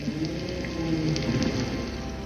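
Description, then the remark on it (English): A low, rumbling whale grumble drifts through steady underwater hiss in the ocean, a short social call from one whale in a group, with wavering tones that swell and fade over a couple of seconds. “That little grumble you just heard was a social call from one of these whales in this group.”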